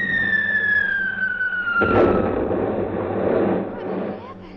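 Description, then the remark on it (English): A high falling whine gives way to a sudden heavy blast of anti-aircraft gunfire opening up on aircraft in range, followed by a loud, rumbling roar that slowly fades; no one speaks. “I think we'll open up on them any second now. Open up? Yes, our anti-aircraft.”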